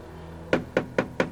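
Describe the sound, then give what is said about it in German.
Four firm knocks on the door of Kommissar Glockner's office at police headquarters in a quick, even rhythm, clear, with no voices and only a quiet room tone in the pauses. “Als sie fertig waren, klopfte es an der Tür von Kommissar Glockners Büro.”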